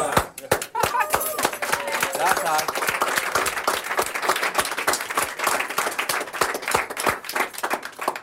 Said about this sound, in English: Do we just clap or...?